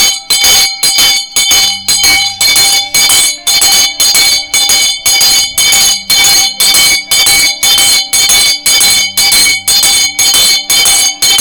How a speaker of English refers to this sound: As I jingle the bell, it's 12 noon, it's 12 midnight now.